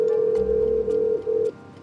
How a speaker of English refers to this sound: So, with little hope, we rang the buzzer.